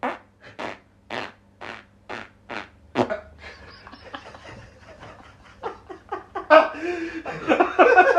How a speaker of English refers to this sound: How about the never-ending farts?